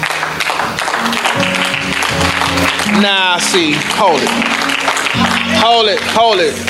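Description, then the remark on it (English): A church audience claps steadily as praise to God in a dense, sustained burst of applause while a man's voice calls out loudly over the crowd noise, with cheers rising in the background. “Come on, give your daddy a clap, pray.”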